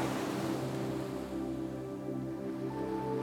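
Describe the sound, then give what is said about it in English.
A steady, booming roar of ocean waves resonating inside a large cave beneath a cliff, amplified as they bounce off the rock walls, with a deep hollow rumble and continuous echoing wash that stays loud throughout, no voices present. “As you go inside the cave, you can hear the sounds of the waves become amplified as they bounce off the rock walls.”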